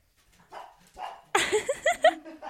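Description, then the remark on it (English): A small dog gives a few soft, muffled woofs, then a burst of quick, high, yappy barks, with no one talking. “I'd like you're one a cat that person, little like that who does cute barking on the sofa.”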